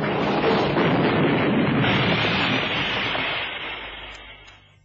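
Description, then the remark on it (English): A car whose brakes won't hold skids sideways and crashes in a loud, sustained rush of roaring, grinding noise that holds for several seconds before trailing off and fading at the end. No voices are heard. “Brakes won't hold. Get down, kid. We're sliding sideways.”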